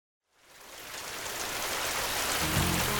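Steady rain fades in from silence and builds to a dense, hissing downpour, continuous, with a faint low rumble joining near the end.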